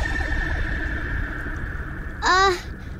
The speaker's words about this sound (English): What was that? It can't be thunder. We're too far below the water to hear the sound of thunder. It is the sound of darkness. A moan and a groan. A growl and a grunt.